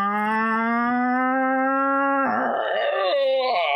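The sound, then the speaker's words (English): A steady, loud horn blast, used as a spoiler-alert signal, holds for about two seconds, then cuts into a long, drawn-out groaning yawn that wavers in pitch until the end. “Spoiler yawn. Horn and the yawn.”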